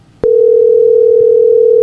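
signal or alarm, telephone dial tone

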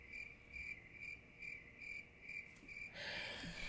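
insect, crickets chirping

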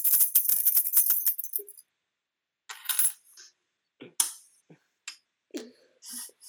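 household object, keys jingling

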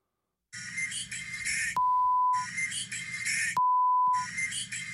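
signal or alarm, censor bleep tone

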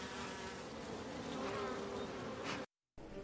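insect, bees buzzing

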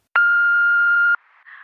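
signal or alarm, answering machine beep

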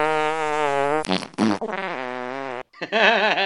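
human body sound, fart sound effect

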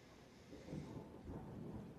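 nature, thunder

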